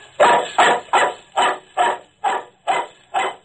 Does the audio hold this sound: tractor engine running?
no